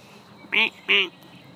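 Two loud, nasal duck quacks in quick succession from ducks on a pond, a mother duck and a baby duck, against a quiet background hiss.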